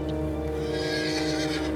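A horse lets out a loud whinny, a shrill quavering neigh that holds steady for nearly two seconds with no other sounds around it.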